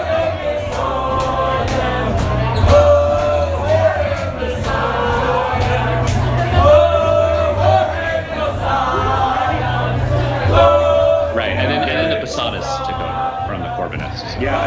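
A large crowd chants loudly in unison to the tune of a rock riff, the melody repeating over a steady, pounding rhythm that carries on for the whole stretch.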